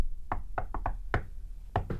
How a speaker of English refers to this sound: So you're saying not only is that the shave and a haircut knock, and they're saying here, there's actually not only a name for that knock, but there's a song, which you just sung as well.